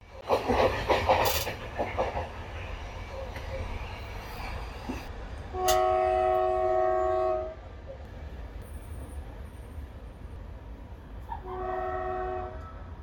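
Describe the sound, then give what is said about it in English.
An overnight train from Istanbul to Sofia rumbles steadily past while its horn sounds twice: one long, loud blast midway and a second, shorter blast near the end. No one speaks. “The major appeal of us visiting Sofia was taking this overnight train from Istanbul”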